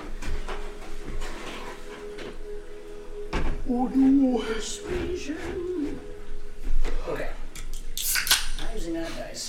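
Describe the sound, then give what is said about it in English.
Dice clatter and tumble in a series of sharp, hard clicks spread across several seconds as they are rolled for a persuasion check, with some murmured talk and faint background noise underneath. “Okay, I'm using that dice. That dice is fired.”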